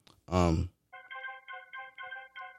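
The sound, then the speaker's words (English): A short vocal exclamation, then a phone ringtone for an incoming call starts up: a bright electronic melody of repeating tonal bursts in a steady rhythm, fairly loud, playing on alone. “Got a little phone call right now.”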